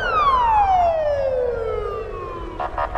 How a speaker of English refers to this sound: The sirens could mean an emergency, police, fire trucks, or ambulances. But in Moscow, they might also warn of the approach of a government apparatchik. And when they come along with their blue flashing lights, they are the kings of the road.